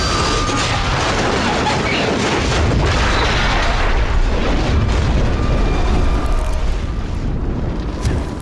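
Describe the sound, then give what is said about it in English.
A plane crash: a loud, continuous roaring rumble with gritty crackling and scattered bursts, holding steady for about eight seconds with no voices over it. The plane was rolling for a bit as it crashed. “The plane crashed.”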